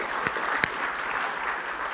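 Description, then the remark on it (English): A crowd claps steadily in dense, continuous applause for the visual arts team, with a couple of sharper, louder hand claps standing out early on, and no voices on top. “Oh, give them a clap.”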